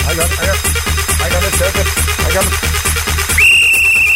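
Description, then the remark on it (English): A loud, sustained whistle blast cuts in near the end, piercing and steady, over a pounding, fast dance beat that runs throughout. “That's right, get the whistle.”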